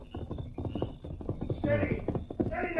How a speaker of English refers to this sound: They became alert at the sound of approaching hoofbeats.